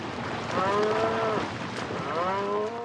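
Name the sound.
cattle mooing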